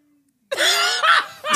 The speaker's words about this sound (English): Coughing up a lung.